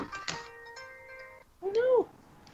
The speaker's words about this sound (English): Sorry. Sylvester gets a phone call. I was going to say, Click Clack, stop making noise. Whoever called me can wait.